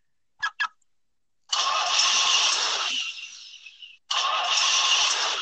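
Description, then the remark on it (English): A car engine starts after two quick clicks, rumbling up loudly and steadily, dropping back briefly, then roaring again. No one speaks. “Should we shut the doors and start the engines, as they say?”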